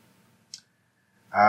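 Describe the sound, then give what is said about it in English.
A single short, crisp tap of a pencil against a desk amid quiet, followed moments later by a loud voice beginning to speak. “Tapping pencil on desk, looking at camera.”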